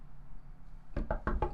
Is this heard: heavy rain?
no